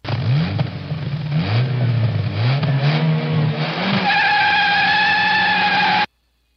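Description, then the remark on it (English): A car revs hard as its tires squeal and burn out, the engine note rising and falling before settling into a sustained, loud, high-pitched screech lasting about six seconds with no talking. “No, it was a car. Tires burning.”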